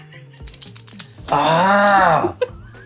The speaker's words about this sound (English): I would add it right now, but you get mad at me when I click the pen. Yes, stop clicking the goddamn pen.